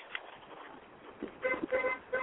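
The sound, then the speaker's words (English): A few short car horn honks sound in quick succession over a steady wash of street traffic noise, moderately loud, with a thin, phone-like quality. “Yeah, the line's moving, so we're actually out in traffic in case you're hearing a bunch of outside noise.”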